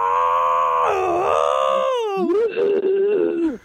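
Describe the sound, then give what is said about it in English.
A man lets out a long, loud, strained scream imitating an anguished cry, holding a high pitch before it cracks and drops into a ragged, wavering groan that cuts off abruptly. “Drink when Tobey Maguire screams like a howler monkey out of nowhere in the finale.”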